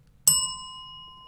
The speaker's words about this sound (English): Hit the bell.